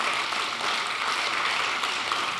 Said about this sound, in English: Are you coming up here? Okay, give a big round of applause to our two volunteers.